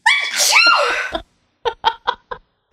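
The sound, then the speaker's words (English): A recording of a sneeze played back: a single loud, drawn-out sneeze with a rising vocal build-up, followed after a short pause by four quick, breathy bursts that sound like soft laughter. “What if I play you back your own sneeze?”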